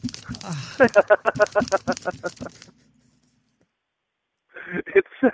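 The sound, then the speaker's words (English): A folded paper fan flaps rapidly, a quick run of steady, rhythmic papery whooshes that stops for a moment of silence, then starts again briefly. “It sounds like a fucking like steam powered fan. It's just paper.”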